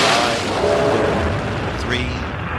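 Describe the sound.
The main engines of Space Shuttle Columbia ignite at launch in a loud, dense, rushing roar that stays steady throughout, with faint radio-like tones and a voice talking underneath.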